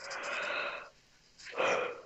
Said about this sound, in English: Sorry, was yawning.